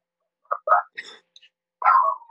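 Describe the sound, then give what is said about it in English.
A dog barks several times in quick, yappy bursts, then lets out a longer, drawn-out bark. Fairly loud, with no talking. “I mean, even your dog is excited about that.”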